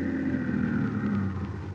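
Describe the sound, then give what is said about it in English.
A car engine hums steadily with a low rumble, easing slightly near the end as the car pulls up and stops in front of a house. No one speaks. “But then the time came, and he was pulling his car up in front of the house where he was to meet the man with a foreign accent.”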